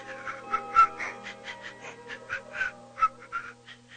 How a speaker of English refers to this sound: You'll hear whistling nostril greats like... and...